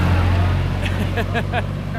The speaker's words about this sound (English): There's some real local color. Yeah, remember when that tractor passed us? That was the best.